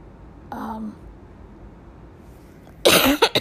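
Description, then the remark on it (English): A brief strained vocal groan, then after a pause a loud, harsh, painful cough bursts out in a couple of quick rasping pulses against a quiet background, from a person recovering from surgery with six incisions. “Coughing still kind of hurts.”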